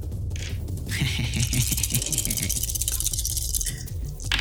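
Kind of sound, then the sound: dice being rolled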